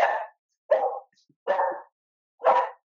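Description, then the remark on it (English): A dog barks four times at a steady, unhurried pace, each bark short, with brief silences between them and no talking. “That's your dog.”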